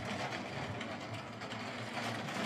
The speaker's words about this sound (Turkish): Belki duyuyorsunuzdur sesi, bilmiyorum, yoğun bir yağmur var burada.